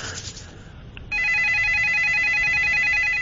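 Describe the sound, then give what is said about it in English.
A telephone rings with a loud, rapid electronic trill that starts after a second of low background noise and pulses steadily to the end. “Let's try again, ring again. I'm ringing again”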